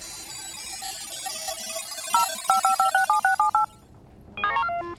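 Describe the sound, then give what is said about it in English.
A rapid series of about nine touch-tone beeps as a phone number is keyed in to call Althar's communication device, each tone short and evenly spaced, followed by a brief higher electronic chirp over a low steady hum. “I'm not sure I've got the right number.”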